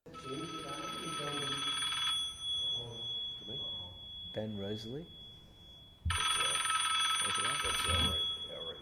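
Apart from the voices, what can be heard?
mobile phone ringing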